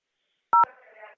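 A single short keypad tone beeps once on a prepaid debit phone call from a correctional facility, a steady two-pitch touch-tone bracketed by clicks, followed by a faint muffled line murmur that fades out.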